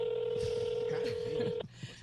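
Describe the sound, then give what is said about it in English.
A steady electronic phone tone, like a keypad dialing sound, holds for about a second and a half, then cuts off abruptly. Faint voices murmur underneath. “Why is he not picking up his phone?”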